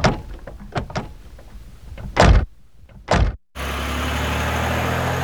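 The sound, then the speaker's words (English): A car door clicks open, then two heavy thuds as doors slam shut, followed by a steady engine rumble starting up. No one speaks. “Get in the car.”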